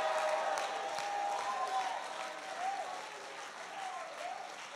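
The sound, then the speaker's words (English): A Pentecostal Full Gospel church audience claps steadily in a dense, continuous wash of applause, with raised voices shouting and whooping praise to God over it at a fairly loud, sustained level. “Clap your hands and give God a mighty shout.”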